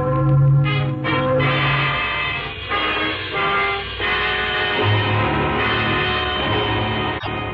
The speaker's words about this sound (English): Sunday morning. Those are wedding bells, darling. Oh. Wedding bells for us.